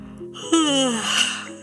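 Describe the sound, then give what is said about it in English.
A single drawn-out yawn performed by a storyteller's voice: a breathy intake rises into a long, loud, sighing tone that slides downward and fades, with no other talk. “It yawned again.”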